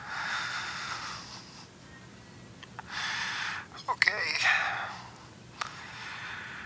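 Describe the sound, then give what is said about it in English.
A seated woman takes slow, deep breaths in and out, roughly three long airy swells in a steady rhythm, with a single short word spoken partway through. “Breathing.”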